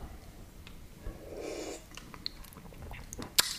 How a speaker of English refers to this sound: Right now I have water in it. There's only a little drop. Here, I'm going to drink it.